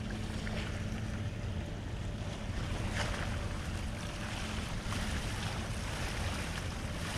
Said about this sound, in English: You like the sounds of water, don't you? I love the sound of the ocean. The most calming sound to me is the sound of the ocean. It's a shame that this is recorded in mono, but yeah, hopefully you can kind of capture some of that sound.